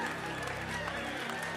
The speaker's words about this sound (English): Give him a hand clap, young people. He did a good job, huh? You did a good job.